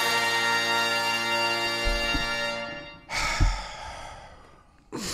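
On the radio program The Hauraki Big Show, a sustained musical tone fades out, then a host who is sick gives a loud, breathy nasal sniff, drawn out over a second or so, with another short sniff starting at the very end.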